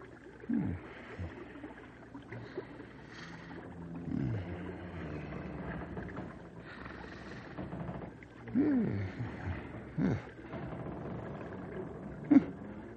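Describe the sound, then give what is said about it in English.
Deep, rumbling groans and snore-like growls of a person snoring hard and groaning in sleep rise and fall in a low drone, with a few louder bursts standing out over a steady murmuring background. “… must be snoring hard.”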